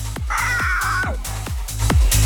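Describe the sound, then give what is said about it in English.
A human voice lets out a harsh, strained screech imitating a bird's cry, sliding down at the end, over a steady thumping beat that repeats several times. “I do owe them a screech from about a week ago because I was still sick.”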